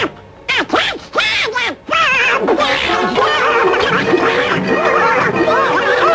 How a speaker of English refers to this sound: Presented with a meal of bread so paper-thin that it's transparent, the duck finally cracks and explodes into a frenzy of crockery-crunching madness.